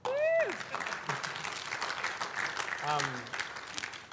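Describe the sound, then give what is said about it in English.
An audience claps steadily for about four seconds, a dense crackle of many hands, while a couple of voices whoop or call out above the applause. “Yeah, we can clap. We can clap.”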